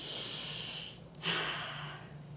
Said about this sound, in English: You know, it's weird when you're, like... We're, like, sniffing. It's so different.